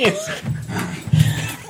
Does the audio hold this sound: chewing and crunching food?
no